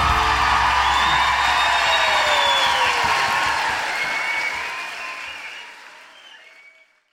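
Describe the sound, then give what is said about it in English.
A large audience at Thornbury Theatre applauds loudly with scattered whoops and cheers, a dense wash of clapping that holds steady before gradually fading out over the last few seconds. “As you are, your motivation to applaud is you think, oh, normally I'm listening to this on a tram.”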